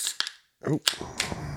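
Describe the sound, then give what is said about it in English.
A can of beer that has been shaking around in a car trunk snaps open with a sharp metallic crack, then a foamy fizzing hiss trails off. A few faint clicks come just before, and a voice briefly speaks. “So if you want to crack it open and cheers with me here.”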